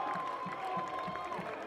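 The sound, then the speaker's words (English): A baseball crowd supporting Tulane cheers during a game against the Bulls in a steady, fairly quiet roar, with a regular beat of low thumps like rhythmic clapping or a drum and a thin sustained tone running through it. “And they've got a good crowd supporting them, and they're all into this game.”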